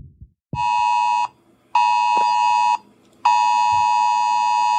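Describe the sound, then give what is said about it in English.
A loud, harsh electronic emergency alert tone from a cell phone in Hawaii, warning of an incoming ballistic missile, sounds in three long, steady bursts separated by short gaps. It rang on Saturday, January 13, 2018, at around 8 in the morning. Faint thumps are in the background and there are no voices. “On this day, all Hawaii residents and visitors woke up to a terrifying emergency alert on their cell phones.”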